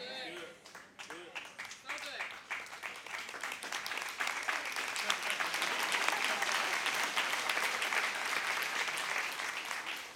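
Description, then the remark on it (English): An audience breaks into applause, a dense rush of many hands clapping that swells after a brief moment of a voice and holds steady and loud to the end. “I don't need the clap of or applause.”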